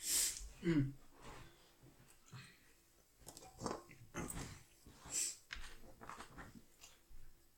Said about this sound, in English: Trying to clear my throat.